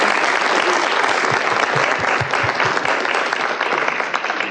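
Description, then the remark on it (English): A crowd claps steadily in loud, dense applause that fills the whole stretch, with a few brief low thumps mixed in and no voices standing out, a round of applause for the nursery children being called up during a program. “Would you please give them a round of applause for the nursery?”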